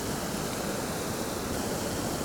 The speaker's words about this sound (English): I'm going to poke the bow of my kayak into the waterfall. Oh yeah, there we are. I can't go very far, there's a rock right behind.